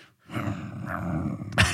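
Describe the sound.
A person makes a low, rumbling growl with their voice for over a second, fairly loud, ending in a brief harsher burst.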